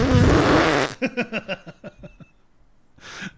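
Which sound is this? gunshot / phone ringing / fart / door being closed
fart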